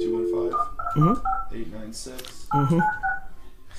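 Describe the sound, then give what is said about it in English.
A rapid run of touch-tone beeps as a phone number is dialed, the bright electronic tones coming in quick clusters, with voices talking underneath. “Let's do a phone number.”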